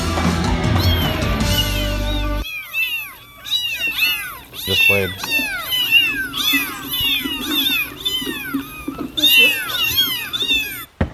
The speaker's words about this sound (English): Kitties. Is that? Those are meowing kittens. Uh-huh. Kitties. Meow, meow, meow.